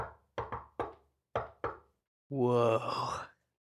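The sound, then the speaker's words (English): About six sharp knocks on a door tapped out in an uneven, patterned rhythm, fairly loud, followed by a drawn-out voiced vocal sound lasting about a second. “I knock with that kind of like...”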